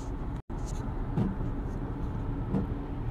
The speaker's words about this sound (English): Yes, as you can tell from the sound of our windshield wipers, it is raining here in Texas.